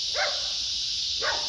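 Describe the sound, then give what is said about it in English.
Two short barks from a dog, about a second apart, over a steady background hiss. “And these dogs have not barked until I got on this damn mic.”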